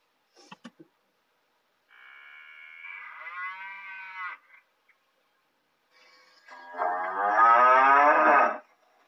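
A cow moos twice, a long drawn-out low then a louder, stronger bellow, with a few soft clicks at the start and no voices.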